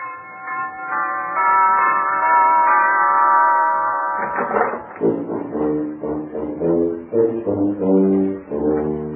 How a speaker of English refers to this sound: Let's try over there. Ring the doorbell.